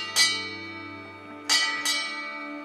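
A bell for work rings out with three clear strikes, one and then a quick pair, each leaving a sustained metallic hum that lingers and overlaps with no voices present.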